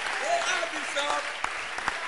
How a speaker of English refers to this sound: But clap your hands for them still. They are helping the service.